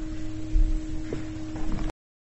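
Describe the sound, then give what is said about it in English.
A steady, mid-pitched ringing tone of a meditation bell, rung to mark a 9 o'clock sitting, holds evenly over soft background hiss for about two seconds before cutting off abruptly. “Let's have the bell for the sitting at 9 o'clock, and then we'll begin as soon after that as we can.”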